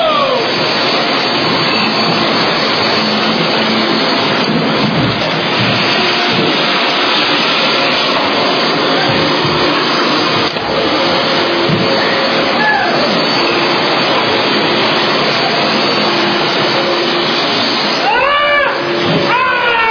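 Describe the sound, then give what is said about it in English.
Several vacuum cleaners, started by contestants in a vacuum-cleaning contest, roar together in a loud, steady, unbroken drone for the whole stretch, their motors whining slightly up and down, with faint voices buried underneath. “Gentlemen and ladies, start your vacuum cleaners.”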